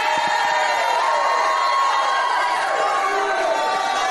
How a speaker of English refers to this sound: Come on, don't stop shouting.